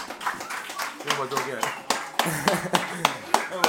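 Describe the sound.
A few people clap unevenly, sharp hand-claps popping out irregularly over about four seconds while voices chatter and talk underneath.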